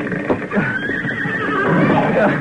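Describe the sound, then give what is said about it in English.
A horse named Jack, the last horse being led out of a fire with thick smoke, neighs loudly and shakily, its whinny wavering for a couple of seconds, with faint hoof clatter and a bit of background commotion. “This is the last horse.”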